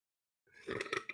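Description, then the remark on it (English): A single throaty burp after drinking bubbly water breaks the silence after about half a second, a rough, gurgling belch with a few rippling pulses, moderately loud and lasting well under a second. “Excuse me. Wow. Sorry. I apologize. I had a bubbly water.”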